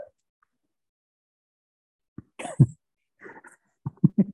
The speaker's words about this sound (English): Got the hiccups going over there.